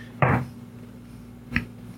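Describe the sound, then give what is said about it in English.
Dice being rolled rattle onto a table in a short clattering burst, then one more small knock comes a moment later, with a faint steady hum underneath; the roll comes up 11. “Roll the dice.”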